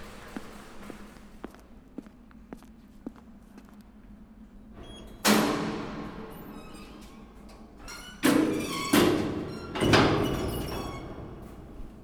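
Quiet footsteps approach, then a heavy security door, on the way out of the main data center area, releases with a loud metallic clunk and ringing rattle, followed by several solid thuds and clanks as it swings shut. No one speaks.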